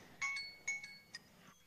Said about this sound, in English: If you can hear my timer there.